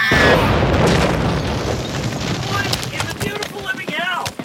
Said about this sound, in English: Did you guys see that horse explode?